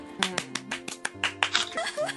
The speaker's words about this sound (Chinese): 我们隔空在鼓掌哎，能不能隔空？ 对，一看就很假。